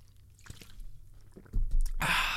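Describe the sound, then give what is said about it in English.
Someone drinks water in quiet sips and swallows, with small wet clicks and soft thuds, then lets out a loud breathy exhale that lasts to the end. “So I'll just drink water and I'll tell you about the first one.”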